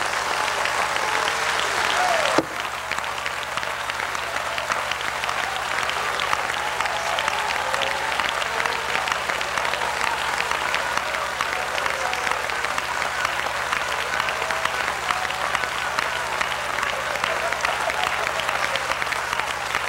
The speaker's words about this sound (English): Would you clap your hands with all of your might tonight?